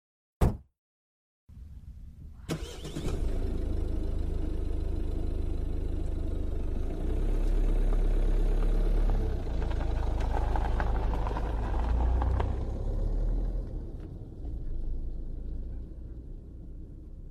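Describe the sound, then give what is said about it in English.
A brief click and a moment of silence, then a car engine starts up and runs steadily: a deep, continuous rumble that holds to the end with no voices. “You decide to take the car.”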